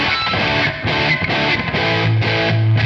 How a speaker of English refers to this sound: just like a straight up nasty distortion type pedal. And, I tend to be like a lot of something that's like a little more abrasive for like my bass distortion, but it actually, it like cleans up pretty well